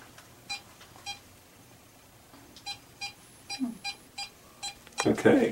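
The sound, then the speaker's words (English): A run of short, high electronic beeps repeats at an uneven pace, moderately loud, with a faint voice briefly in the background and a sudden loud burst of noise at the very end. “To stop you from beeping. Yeah, you were just going a little crazy there.”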